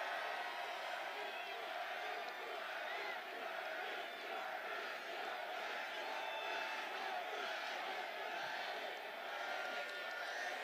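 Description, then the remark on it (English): A large crowd at a Bernie Sanders rally in Brooklyn roars and cheers steadily, a dense wash of shouts and whoops that stays loud and unbroken throughout, with no single voice standing out. “What an incredible crowd.”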